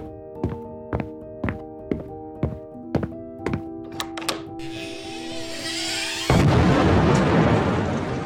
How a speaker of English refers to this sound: When the bomb exploded, it blew Bradley from his doorway out to the sidewalk.